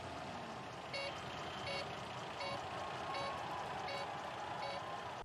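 A truck reverses with a steady engine rumble while its backup alarm beeps at an even pace, about six clear beeps in a row, prominent over the noise.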